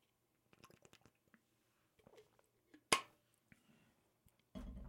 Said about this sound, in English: You're also hearing me drink water in real time because there's nobody else in here to fill the silences when I do.